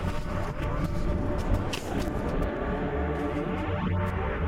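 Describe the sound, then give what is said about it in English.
A bus rumbles steadily as it descends gently from a mountaintop to a mall parking lot, its engine drone dense and continuous, with a faint whine shifting in pitch as it rolls downhill. “the bus carrying our wayward travelers descends gently from atop the mountain to the mall parking lot.”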